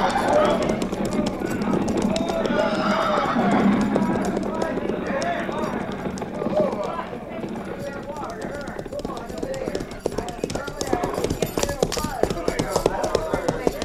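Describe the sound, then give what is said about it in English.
Many hooves of a mounted troop clip-clop in a steady, uneven patter as the riders halt at a creek, with a horse whinnying partway through, over a dense rumble of movement and men talking. “Tell the men to dismount and unsaddle, pin graze and water.”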